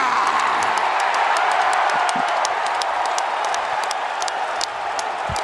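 arena crowd cheering

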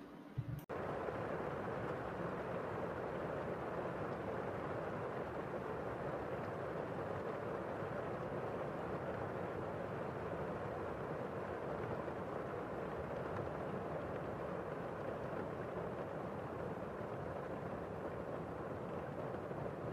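rain

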